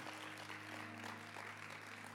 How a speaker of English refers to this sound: We ought to clap our hands for all of our L Kids team. They do such a phenomenal job leading.